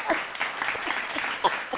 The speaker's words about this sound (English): Okay, where did the applause come from? What the fuck?